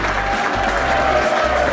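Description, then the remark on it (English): A standing audience, asked to clap and cheer, claps steadily with some cheering mixed in, a dense, continuous wash of applause that stays loud and even throughout, with a faint whistle-like tone running through it. “Keep clapping and cheer!”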